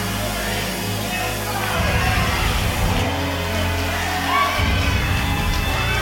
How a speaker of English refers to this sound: I can tell you his name, but I just need you to yell for somebody next to you. Say, I prophesy something right now is happening to favor you.